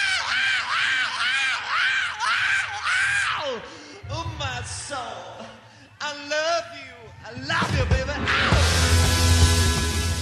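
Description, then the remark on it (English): A rock singer's scream sampled into a song: loud, repeated wailing cries with swooping pitch, ending in a harsh, noisy burst of distorted sound. “So we thought we'd take …'s scream, and we asked if we could use it”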